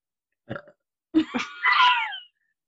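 A short croaky belch, then a longer, drawn-out burp with a rising, voiced, tonal stretch, loud, with no talking around it.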